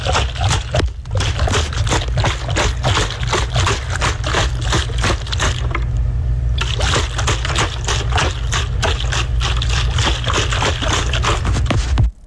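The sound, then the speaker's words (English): Water sloshes back and forth in a pitcher, a continuous run of splashy, gurgling surges with a steady, fairly loud rhythm, briefly thinning midway and ending with a soft knock. No one speaks. “I'm going to say a pitcher of water.”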